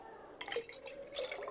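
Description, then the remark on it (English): Liquid is poured into a container in two short, splashy bursts, with a faint trickle between them and a rising gurgling tone as it fills. It is quiet, with no talking. “We pour the sin that he took from every single human being in this world.”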